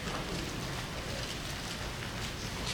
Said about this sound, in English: I love to hear them pages turn.